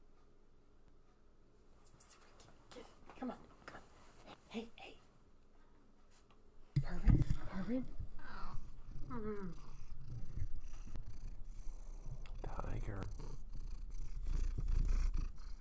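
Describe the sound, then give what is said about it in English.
A domestic cat named Tiger purrs loudly and steadily, a deep rumbling drone that starts partway through and continues to the end while a person talks over it. “Now we're purring.”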